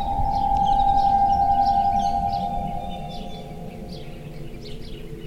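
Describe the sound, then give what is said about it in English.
A sustained, slightly wavering hum of an aeolian harp, its harmonics somewhat erratic, sings over rumbling gusty wind, fading out halfway through, while small birds chirp intermittently. “Gusty. A gusty wind. The harmonics are a bit kind of erratic.”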